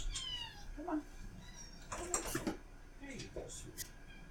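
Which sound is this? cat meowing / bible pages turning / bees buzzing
cat meowing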